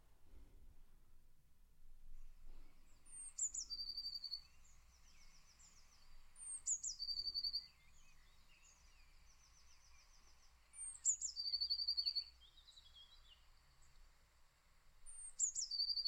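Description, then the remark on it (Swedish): A blue tit repeats a high, thin phrase of sharp notes followed by a quick trill, four times at steady intervals, over a quiet outdoor background with no talking. “På engelska heter det blue tit.”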